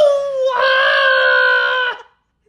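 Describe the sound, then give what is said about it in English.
A single loud, sustained scream lasting about two seconds, rising sharply in pitch partway through, then cutting off abruptly into silence. Piercing, with no other sounds around it. “A scream.”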